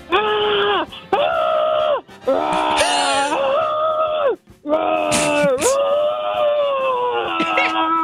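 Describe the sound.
A man's voice mimics an excited bear with loud, sustained growling wails and moaning howls, delivered in several long bursts with brief breaths between, playing a Chicago Bears player who can only communicate in bear growls, conveying excitement about winning the Super Bowl.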